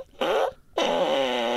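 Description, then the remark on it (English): Two short, loud, buzzy fart sound effects from the front speaker of a button toy, its 'butt burp' button chosen: a brief blast followed by a pause and a longer, wavering raspberry-like blare, clear with no talking. “Pick your buttons. What should we get? Butt burp.”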